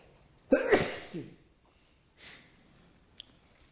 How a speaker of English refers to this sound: And I'm about to sneeze here.